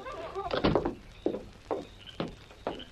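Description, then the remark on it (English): A door leading to the outside is handled with a cluster of clunks and a creak, then several evenly spaced thuds follow, like the door swinging shut and steps moving away, moderately loud. “Right out this door. It's open to the outside.”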